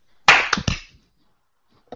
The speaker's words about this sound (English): We're going to do a 3, 2, 1 clap. Ready? It's fine. It's not. All right. 1, 2, 3.